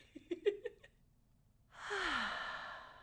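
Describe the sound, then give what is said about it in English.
A few short voiced murmurs, a brief pause, then a big, breathy exhale like a deep sigh as a person takes a big, full breath, with a faint falling voiced tone as it trails off. “You know, you can start right now at home by just getting comfortable and taking a big, full breath.”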